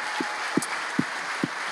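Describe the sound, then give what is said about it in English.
Steady crowd applause at a church, a dense wash of clapping and cheering for the church's pastor couple, with a few louder, evenly spaced claps or thumps standing out. “So if we can just really just give a huge cheer for Pastor Colby and Kristen and what they do for this church.”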